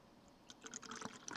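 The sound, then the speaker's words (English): Beer poured into a glass as a small cleansing pour, a quiet run of splashing, bubbly trickles that starts after a brief pause and continues unevenly to the end, with no talking. “Let me give you a little cleansing pour.”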